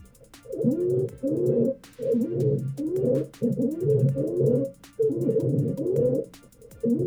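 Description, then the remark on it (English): Stridor from a patient with a tightly narrowed upper airway: harsh, crowing, squeaky breaths repeat in a steady in-and-out rhythm, fairly loud, with brief gaps between them and no talking. “But here's what stridor sounds like.”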